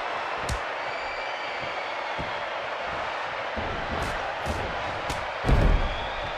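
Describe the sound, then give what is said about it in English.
Wrestler Chris Benoit's scoop slam lands on the ring mat as one heavy, booming thud near the end, after several lighter impacts, all over a constant roar of crowd noise. “As Benoit now with a huge scoop slam.”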